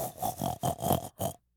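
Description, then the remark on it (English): A man in an office imitates a pig, letting out a quick run of nasal, grunting oinks in close succession, loud, ending abruptly in silence. “Oinked like a pig.”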